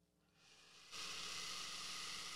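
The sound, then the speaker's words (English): A man hisses through his teeth, a breathy hiss that builds softly, then jumps abruptly louder and holds steady for over a second. No one speaks. “He's hissing.”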